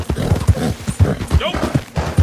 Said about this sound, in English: I love this horse. This horse is so good.